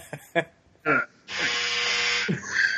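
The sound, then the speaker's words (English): A clothes dryer's end-of-cycle buzzer sounds one loud, steady, harsh electric buzz lasting about a second and a half, with brief bits of talking just before and overlapping its end. “Dryer's done”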